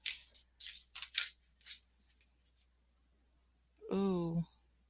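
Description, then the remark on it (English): A handful of quick, crisp papery swishes from a Kemetic Tarot deck of about 60 cards being shuffled, clustered in the first couple of seconds, followed by quiet and then a short voiced exclamation. “it comes in a black box, and oh, just very well done, and they shuffle so beautifully.”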